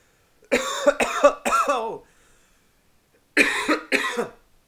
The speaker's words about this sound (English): I'm coughing, which means that I need to drink my Four Sigmatic blend.